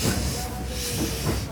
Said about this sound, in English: The train pulls into Philadelphia.